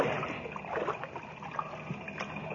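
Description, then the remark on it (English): A mine's automatic pump engine, which cuts on when the water reaches a certain level, runs steadily with a muffled drone continuous for the whole stretch, mixed with a wash of trickling, sloshing water in a partly flooded mine shaft, and no voices. “The mine's pump engine.”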